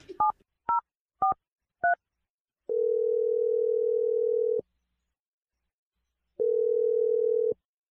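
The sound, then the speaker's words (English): Four quick touch-tone beeps of a phone dialing someone's sister, followed by two long, steady ringing tones separated by a pause. There is no talking. “I'm gonna dial your sister's phone number right now.”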